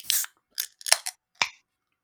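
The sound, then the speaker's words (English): A can of Teddy Hopper, a New England IPA from the Dam Brew House, cracks open: a short hiss of escaping gas followed by several sharp metallic clicks and pops spread over two seconds, with no talking. “3, 2, 1, crack.”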